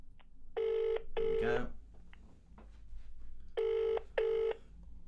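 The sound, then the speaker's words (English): A phone ringback tone purrs in two double-ring bursts, steady and electronic, with a pause between pairs. A man speaks briefly between the rings. “Is it ringing?”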